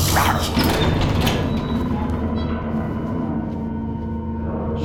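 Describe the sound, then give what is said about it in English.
A heavy door grinds open with a sustained mechanical rumble and scraping, loud, lasting several seconds with no voices. “Christ, you just open every goddamn door like no big deal.”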